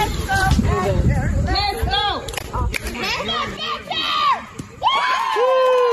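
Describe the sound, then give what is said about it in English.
A crowd of parents and children cheer and shout together for a child batting at a tee-ball game, their overlapping voices rising and falling in excited bursts for several seconds, lively and fairly loud throughout. “Isn't that the best to hear other people cheering on your own kid?”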